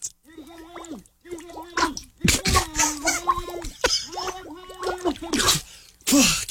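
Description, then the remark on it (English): A voice sings a wobbly tune into water, the notes bubbling and gurgling, with bursts of splashing and sputtering between phrases, fairly loud. “Were you singing a song there? I was singing a song.”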